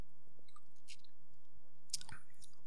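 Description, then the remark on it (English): Quiet mouth noises: a faint wet smack, then a short sharper slurp as someone sips a liquid, soy sauce, with no one talking. “Go on, have a quick sip.”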